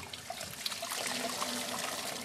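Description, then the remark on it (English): Hot dye liquid pours steadily through a sieve into a pot of more water, for dyeing a large amount of fabric, making a continuous splashing trickle that holds at an even level for the whole moment, with no voices. “I'm pouring the materials through a sieve and adding it to more water because I'm going to be dyeing a large amount of fabric.”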